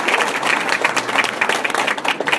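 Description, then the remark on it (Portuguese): Audience applause for the guests at a business opportunity presentation: a dense, steady wash of many hands clapping at once, loud and continuous for a couple of seconds with no voices over it. “Un fuerte aplauso.”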